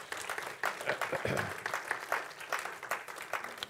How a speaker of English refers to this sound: Praise the Lord. Let's give the Lord applause for that.